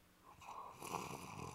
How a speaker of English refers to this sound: I get more relaxation listening to the dog snore. Well, that goes without saying. I mean, the dog knows what's what.